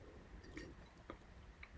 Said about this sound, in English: So let me take a sip of wine.